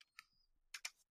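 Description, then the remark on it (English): A handful of light, sharp clicks from a laptop touchpad used in place of a mouse, quiet and irregular: two spaced taps, then a quick pair. No one speaks. “I can't find my mouse, so I'm just using a little pad on my keyboard.”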